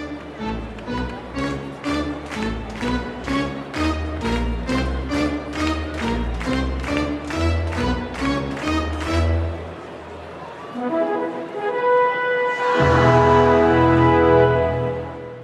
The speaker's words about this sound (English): These days, that fanfare is commonly played on the organ at hockey and baseball games. It usually starts with an ascending intro that ramps up into the main melody. Here's organist Nancy B. Heffley playing it at Dodger Stadium.